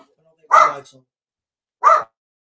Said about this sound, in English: Sorry about that. I don't know what. Dogs are quiet till you decide to go live and they want to go crazy.